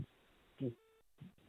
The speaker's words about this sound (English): Cut out. But hard to get … on his phone at the moment. Obviously, some dodgy reception down there.